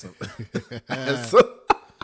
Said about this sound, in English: All right, that's a real cough, but it's not a COVID cough.